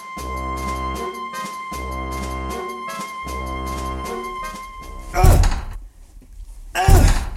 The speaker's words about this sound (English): No, the door won't budge.